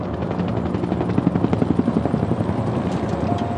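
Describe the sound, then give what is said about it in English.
A helicopter searching the surrounding terrain of Cache Creek Canyon passes overhead, its rotor blades thumping in a fast, steady chop that swells loudest midway through, then continues as a broad droning roar with no voices. “Thus, a search of the surrounding terrain of Cache Creek Canyon began using all-terrain vehicles and helicopters.”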